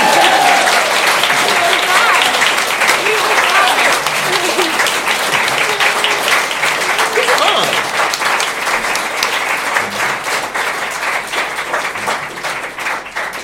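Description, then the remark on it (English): Loud, sustained applause from a large audience at the end of a live show, dense clapping for over ten seconds before gradually thinning slightly toward the end, with faint cheers mixed in. “Give a round of applause for all of our adventures.”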